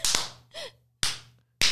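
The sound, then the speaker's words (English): Three sharp, loud hand claps at an uneven pace, each a crisp smack that fades quickly, with a brief high-pitched squeak between the first two. “We got to do the clappy claps.”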